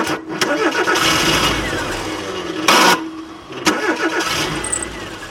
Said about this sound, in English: She tries several times, but the engine won't start.